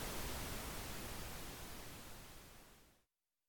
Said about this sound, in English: The sound stopped. Only soft static remained.